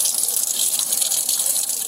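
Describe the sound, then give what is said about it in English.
Water runs steadily from a tap for a kitten's bath at a police station, in a bright, continuous gushing hiss that stays even in loudness for the whole two seconds, with no voices over it. “Next, it's time for a bath at the police station.”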